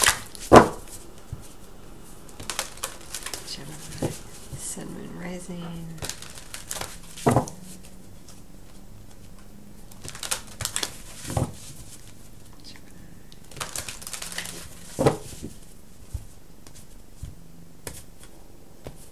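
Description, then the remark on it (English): A deck of cards being shuffled for a Gemini reading, with repeated crisp riffles and papery snaps coming in bursts. A few quiet spoken words drift in between the shuffles. “I'm gonna keep shuffling it.”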